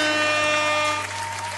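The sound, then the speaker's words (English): A short burst of applause sound effect: a dense, steady crackle of clapping that holds at an even, moderate loudness for about a second and a half, with no voices over it. “Let me give us a little bit of applause.”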